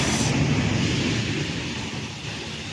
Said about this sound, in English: Okay, now we see the DHL 757-200 come into view. It looks like the spoiler panels are up, so yep, they are. Completely lost hydraulics. I can hear the thrust reversers.